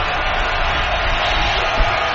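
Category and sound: crowd, stadium crowd noise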